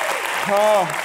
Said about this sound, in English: Can you give your pastors a big old round of applause? Come on. Woo, let's go.